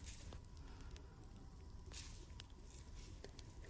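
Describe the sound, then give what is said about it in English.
Soft squishing of a wet cloth in warm water, with a few faint drips and splashes scattered through a quiet, steady background. No one speaks. “Just with some warm water.”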